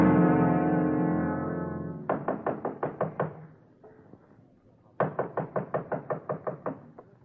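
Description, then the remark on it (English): A decaying tonal hum gives way to two bursts of rapid, firm knocking on a door, about six knocks then a pause and roughly ten more, loud. “Mother, I can open the door, can't I?”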